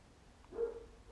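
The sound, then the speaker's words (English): A neighbor's dog gives a single short bark, faint and slightly muffled, with no one talking and only a quiet background around it. “My neighbor's dog is barking.”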